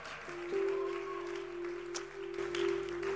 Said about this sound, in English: Keep clapping for the Lord. Keep clapping.